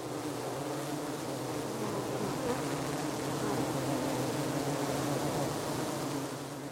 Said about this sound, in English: works at the Bee Lab and got the audio sample for the bees for today's episode.